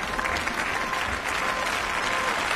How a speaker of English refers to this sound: The applause was loud, but not as loud as it might have been. Last night, Ursula von der Leyen became the first woman to be appointed president of the European Commission, after a secret ballot by members of Europe's Parliament.